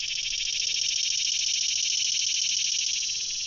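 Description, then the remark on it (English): A loud, steady buzz from a single cicada sitting right next to the listener in sunlight, its abdomen vibrating as it sings; a dense pulsing whine drones without pause, holding evenly for the full few seconds with no voices. “You know, the cicada lives underground for many years, some up to 17 years.”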